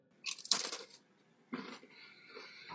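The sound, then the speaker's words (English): Someone crunches on a crisp snack: two bursts of crackly, brittle chewing noise, the first sharp and dense, the second steadier and more muffled, with no talking. “I'm not even going to complain about you crunching those peas, cheese, and C's, man, because it looks delicious.”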